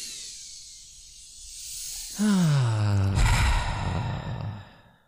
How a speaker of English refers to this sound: Deep breaths in through your nose, out through your mouth. Oh, that feels good.